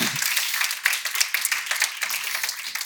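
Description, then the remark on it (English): A crowd at a church applauds with steady, dense clapping that fills the whole stretch, many hands overlapping into a bright, crackling wash at even loudness without a break. “Also wanted to let you know, yeah, we can give a round of applause.”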